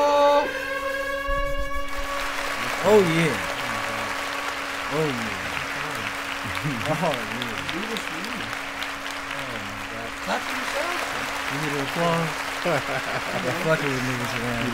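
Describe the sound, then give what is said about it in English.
Sustained applause fills the whole stretch as the host of an underground music show is introduced, a dense steady wash of clapping that follows a brief held musical tone at the start, with voices calling and talking over the clapping. “You have no choice with hey, did you hear like how long that applause lasted?”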